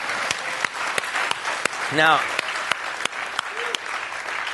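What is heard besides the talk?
audience clapping and applauding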